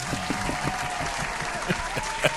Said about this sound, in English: Welcome back to the African Creator Season 2. Insert imaginary clap.